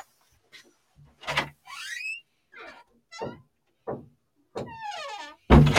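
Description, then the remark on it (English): A door creaks and squeaks open in a series of high, drawn-out whines as Hobbs, a big 7.5-kilo cat, comes in. The whines are mixed with soft thumps and knocks, ending in a louder bump. No one speaks. “I hope you could hear the door squeaking as we entered it.”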